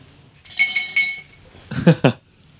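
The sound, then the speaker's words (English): A small drinking glass clinks three times in quick succession with a bright, ringing tone, followed by a couple of duller, clattering knocks, with no talking. “I think I got your little glass that makes a lot of noise.”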